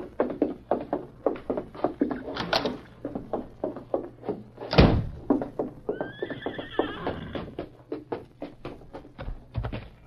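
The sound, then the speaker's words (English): A horse whinnies loudly with a rising, wavering neigh while hooves clip-clop in a steady rhythm on a hard surface, with no voices. “Now, what about my horse? The horse is right across the street at the livery.”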